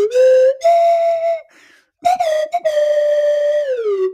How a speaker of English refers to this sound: Do you want me to play the slide whistle for like elevator music? Hold, please.